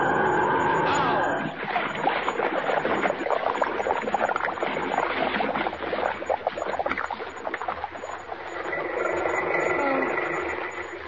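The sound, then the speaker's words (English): Loud, continuous rushing and churning water, dense and turbulent, with a muffled bubbling quality, surging steadily for several seconds before easing slightly, as Lois Lane's car crashes through a bridge rail into a lake. No voices are heard. “She's going through the rail. She's in the lake.”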